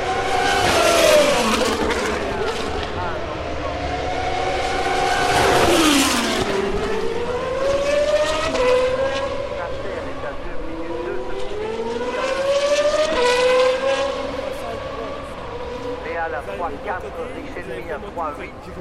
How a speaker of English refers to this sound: I thought we'd have a little more sound from GP2 at Spa. You can hear them reverberating through the Ardennes forest.